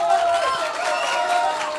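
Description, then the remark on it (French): An audience applauds and cheers together, a dense, steady wash of clapping mixed with excited voices, loud throughout the short burst, for a performer doing his act live in front of people for the first time. “Mais c'est la première fois qu'il le fait en live devant des gens, donc on peut l'applaudir, s'il vous plaît.”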